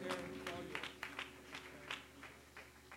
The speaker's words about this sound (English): Amen. Let's give that applause to the Lord right now.